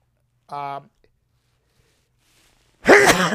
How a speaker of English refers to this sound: excuse me, folks. Terrible. You never sneeze on television, but here again, it's live TV. If we were taping, that would probably be taken out.